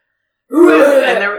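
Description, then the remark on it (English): After a short silence, a person makes one sustained, rough, fairly loud growling groan, imitating a man coughing and growling in a movie theater during The Conjuring 2. “That's interesting because when we went to see The Conjuring 2, we had a man in our theater who was coughing probably and like growling.”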